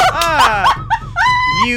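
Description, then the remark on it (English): A person's voice imitates a dog during a tabletop role-playing game, as a character transforms into a dog, letting out several quick, whiny barking yelps with rising and falling pitch, loud. “You see Hans kind of shake the guard and then transform into a dog.”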